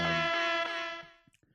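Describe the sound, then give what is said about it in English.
A single loud air horn blast, bright and buzzy with a steady pitch, held for about a second before trailing off, followed by a few faint clicks. “Air horn.”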